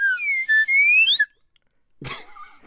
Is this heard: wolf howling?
no